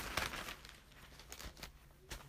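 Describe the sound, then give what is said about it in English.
Quiet rustling of book pages being flipped to find 1 Samuel chapter 27, with several soft crinkly swishes spread across a couple of seconds and no one speaking. “Okay, I'm turning to it. That's why you hear pages turning.”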